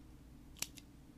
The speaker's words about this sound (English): Mechanical pencil, duh! Who has those anymore? You don't do it from your desk! I don't use mechanical pencils. I'm an adult, I use pens.